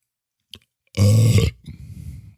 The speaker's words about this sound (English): Oh. Another one of those famous belches. Or whatever you got. If you have to belch, just go ahead, international.